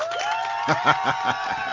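people clapping and cheering

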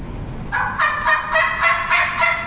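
turkey gobbling

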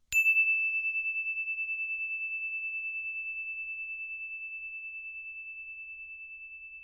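story bell ringing

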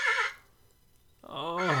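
horse neighing

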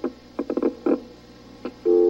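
telephone dial tone

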